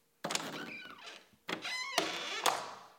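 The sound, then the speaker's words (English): A door, door number 4, creaks open in two drawn-out, squeaky pulls, each starting with a sharp knock or clunk, fairly loud with no voices. “Just take a look through glorious door number 4.”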